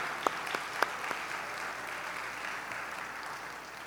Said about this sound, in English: If you're converted in the campus ministry, you were baptized in the campus ministry, look around. That's incredible. Go ahead and give them a round of applause.